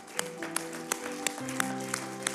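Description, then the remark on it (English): Steady rhythmic clapping, sharp claps landing at a regular beat over sustained low musical tones, as the men of an audience stand and give a clapping ovation for the seated women; no voices stand out. “Every man in the house, whether you are small or old, married or single, could you please rise to your feet and one more time, a clapping ovation for our women while they are seated.”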